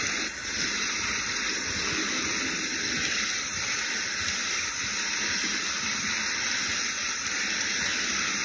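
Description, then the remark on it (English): Steady, dense rain from a thunderstorm pours without a break, a constant hissing wash of water that stays even in loudness throughout, with no voices and no thunder standing out. “Stupid thunderstorm.”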